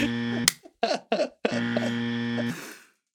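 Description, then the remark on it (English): Two loud, harsh buzzer blasts, each lasting about a second and holding a steady low drone, separated by a few short throaty vocal bursts. “A buzz from each of us.”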